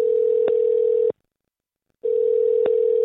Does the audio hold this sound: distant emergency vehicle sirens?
no